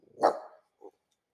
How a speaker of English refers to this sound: Apparently the dogs don't like blown saves either. In fact, there appears to be some dogs outside.